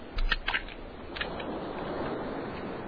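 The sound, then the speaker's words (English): Crunching, snapping bites of a crab biting, not chewing, as it devours people: a quick cluster of sharp crackles at the start, another brief crunch a moment later, then a steady, grainy hiss fills the rest. No one speaks. “He's not chewing, either. This is just biting.”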